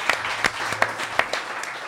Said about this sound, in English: And it's great, isn't it? Let's give this round of applause to Buffalo Wobbs and Catfish and Big Dan and the people who have put this together. Yeah. Done an amazing job. It's incredible.